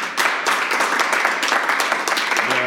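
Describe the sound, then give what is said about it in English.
A crowd applauds steadily for Beto O'Rourke, dense overlapping hand claps forming a bright, sustained wash of sound at a fairly even loudness for the whole stretch, with faint voices mixed in. “Beto O'Rourke, please clap.”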